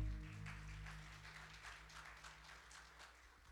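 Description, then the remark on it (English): A crowd applauds with dense, steady hand clapping that holds at a moderate level for a few seconds, over a low sustained hum, given as a hand clap of praise to the Lord as the audience is seated. “As you're seated today, would you give the Lord a big hand clap of praise?”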